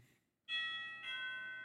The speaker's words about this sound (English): Keth goes back to Lady Evelyn's house. I ring the doorbell.